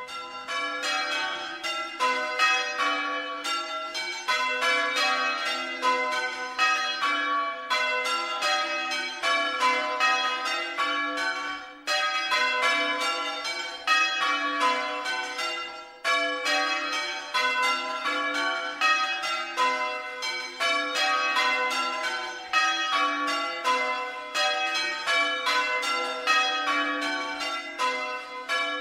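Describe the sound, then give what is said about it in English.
A peal of pre-Reformation church bells at the Church of St. Bartholomew the Great in Smithfield, London, rings continuously, overlapping strikes tumbling in steady cascading rounds, bright and resonant with a full ringing tone and no voices. “Here, for example, is the peal of bells in the Church of St. Bartholomew the Great in Smithfield, which of course doesn't stand very far from here.”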